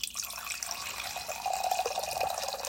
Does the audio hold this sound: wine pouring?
yes